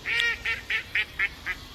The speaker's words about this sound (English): The damn fucking duck started laughing when I said that, y'all. Duck bust out laughing.